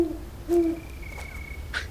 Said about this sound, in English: The owl called hello to her, soft but clear.